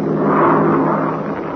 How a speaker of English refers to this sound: Boy, what an airplane. It's the French entry in the race. You see the French flag painted on the fuselage? You're right. Wow, can that thing go? The rock must be giving it a sniff. Gee whiz. Why, that's the fastest transport I've ever seen.